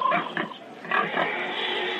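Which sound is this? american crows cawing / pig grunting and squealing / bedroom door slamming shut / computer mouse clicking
pig grunting and squealing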